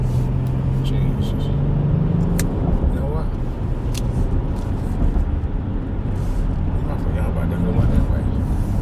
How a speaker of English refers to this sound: It's traffic.